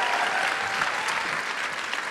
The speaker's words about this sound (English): Big round of applause for Sukh.